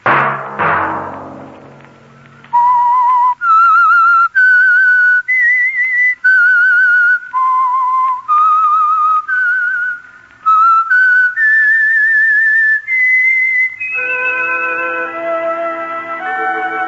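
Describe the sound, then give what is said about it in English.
A clear, loud whistled theme melody signalling a Sunday-night radio program sponsored by Signal Oil Company, sustained, gliding notes in a slow, haunting tune, played alone after a brief opening noise and ending with a fuller musical chord. “That whistle be your signal for the Signal Oil program, The Whistler, each Sunday night at this same time.”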